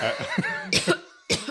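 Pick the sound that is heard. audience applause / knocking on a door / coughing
coughing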